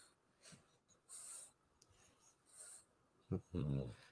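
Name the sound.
dog breathing heavily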